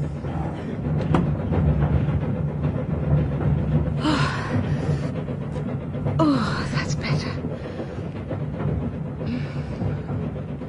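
A steady, low rumble of a train rolling along the rails fills the whole stretch, with a few soft breathy gasps rising above it now and then.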